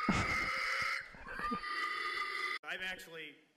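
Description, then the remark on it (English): A person loudly imitates a pig in a pig call, letting out shrill, strained squeals and grunting oinks, with a brief pause before one last rising squeal. “Pig Calling”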